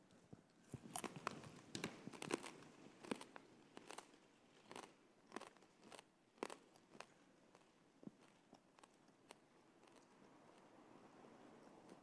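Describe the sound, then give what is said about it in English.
Scattered, irregular crunches and crisp snaps as many people bite into and chew small pieces of communion bread during communion, with no talking. “He gave his body for us. He humbled himself for us that we might follow in his footsteps. Let's take his body together.”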